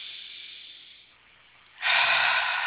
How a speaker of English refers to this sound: Make time for breathing, resting, and self-nourishment. Actually, let's take a deep breath right now.